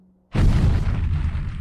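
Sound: door slamming shut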